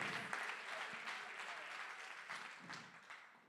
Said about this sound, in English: Oh, come on, clap your hands, some sinners in this room. Come on, clap your hands if you found yourself on the short end of trust in His love.